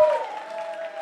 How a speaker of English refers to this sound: Clap for her, come on!